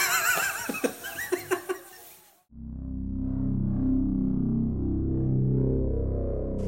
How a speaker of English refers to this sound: Echoey in here. Way. This is a real echoed. It's definitely not a reverb plugin.